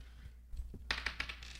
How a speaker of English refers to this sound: Roll a D6.